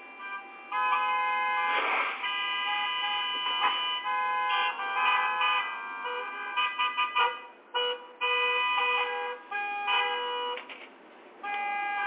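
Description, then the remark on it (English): Multiple car horns blare loudly and almost continuously in morning traffic, overlapping in long sustained honks with a few brief gaps, like a jam of impatient traffic. No one speaks. “As we take a look at your traffic, and just know that it is crazy outside this morning.”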